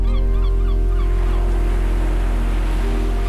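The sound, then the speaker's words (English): A steady wash of ocean waves rolls beneath a series of repeated honking seabird calls, busiest at the start and thinning out, with no voices. “I sit with you and I watch the waves and I breathe in the salt air and I cry.”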